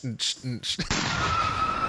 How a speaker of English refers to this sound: Oh, just crashed a car there. I don't know if you heard that or not.